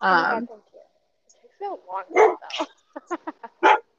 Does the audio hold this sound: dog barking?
yes